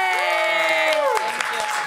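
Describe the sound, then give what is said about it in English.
An audience breaks into steady applause for a trivia contestant who answered five of five questions correctly, a dense wash of clapping with a few sharper claps, while cheers and whoops ring out over it. “Round of applause for Sierra Casey.”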